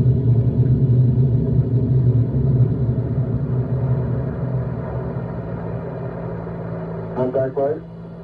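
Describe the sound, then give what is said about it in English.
The Saturn V rocket of Apollo 11 lifts off with a deep, steady roar that fills the low end and slowly eases. A brief radio-like voice cuts in near the end. “Liftoff on Apollo 11.”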